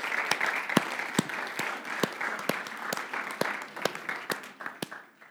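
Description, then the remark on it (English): A crowd applauds steadily during a sermon, a dense wash of clapping with a few sharper claps popping out in a loose rhythm, fading slightly at the end. No one speaks. “So seriously, let's just give them a round of applause.”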